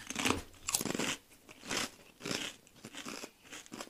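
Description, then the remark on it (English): Loud, sharp crunches of someone biting and chewing a thick Trader Joe's Everything But the Bagel Seasoned Kettle Cooked Potato Chip, with about six bright crackly bursts coming in an uneven rhythm and short quiet gaps between them. No one speaks. “It's a thick chip. Thick kettle chip, yeah.”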